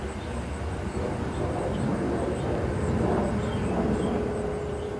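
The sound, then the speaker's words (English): A jet airplane on the Columbus Airport flight path roars steadily overhead, a loud, broad rumble with a faint high whine, swelling slightly toward the middle as it passes. “And we live directly under the Columbus Airport flight path, which is actually pretty fantastic because we love airplanes.”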